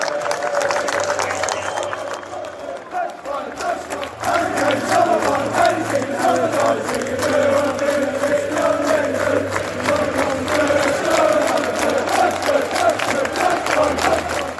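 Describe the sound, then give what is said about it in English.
A large stadium crowd of England football supporters in Naples cheers and roars continuously after England's 2-1 win over Italy, as Harry Kane crosses the running track to applaud them; a dense, loud wash of voices with scattered clapping that swells slightly and stays strong throughout. “Harry Kane is going to cross the running track, coming as close as he can to the England supporters, applauding us.”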